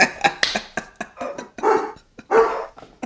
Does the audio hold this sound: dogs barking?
yes